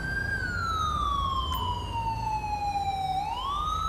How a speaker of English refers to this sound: Fuck it, I'll just turn the siren off.